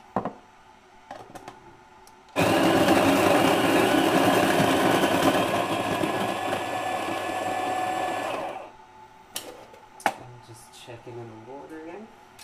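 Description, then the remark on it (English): A coffee grinder set as coarse as possible grinds coffee beans, roaring into action with a loud, steady motorized whir with gritty texture lasting about six seconds before cutting off abruptly; faint clinks and handling noises come before and after. “But if you do have a grinder, I would just as coarse as you can, basically.”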